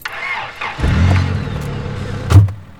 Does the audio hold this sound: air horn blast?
no